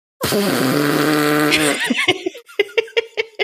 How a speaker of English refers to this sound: farts are the funny. Funniest bodily function, I think.